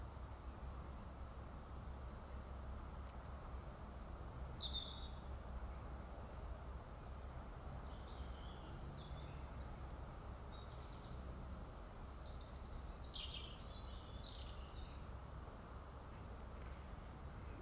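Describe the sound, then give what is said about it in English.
Scattered bird calls and short song phrases in the evening, quiet and intermittent, over a steady low outdoor rumble with no one speaking. “Sounds like the birds are heading into their evening routine.”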